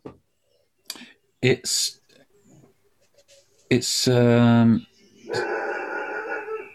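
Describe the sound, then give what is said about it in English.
A dog barks loudly, a few sharp yelps followed by longer, drawn-out barks with a whining edge, separated by short quiet gaps. “It's about 100 yards from my dog. Yeah, I can hear him.”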